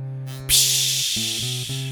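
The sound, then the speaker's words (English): A sudden, loud burst of hissing, like water boiling over onto a hot stove, sizzles steadily for over a second over a low, droning hum that briefly cuts out and returns. “If you put the water on high heat for too long, it boils over and spills onto the stove. And then you get that psh”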